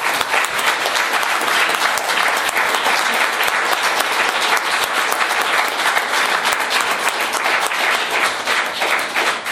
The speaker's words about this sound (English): And I think a hand clap would be about the right time.